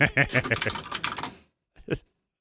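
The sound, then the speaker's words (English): A rapid burst of clicky computer keyboard typing for over a second, fairly loud, as someone looks something up, then a short pause and one final pair of keystrokes. “Hold on, let me get my clackety clickety keyboard.”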